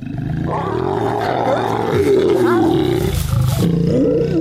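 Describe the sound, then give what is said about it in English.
A lion growls and roars continuously, played from speakers in a wildlife study, loud, with deep rumbling tones and a rough, throaty texture that swells and rolls through the whole stretch without pause. “Elephants in the study approached and even attacked the speakers that were playing these lion sounds, but they turned tail and ran when the speakers played human voices.”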